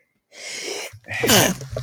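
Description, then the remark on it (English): A single forceful, loud sneeze: a breathy inhale followed by a sharp, explosive burst with a rough, spraying tail. “You sneezed so hard, your ears flew.”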